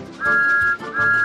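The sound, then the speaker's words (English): Two loud, shrill whistle blasts in quick succession, each a steady high tone held for about half a second, sounding alone. “Whistle!”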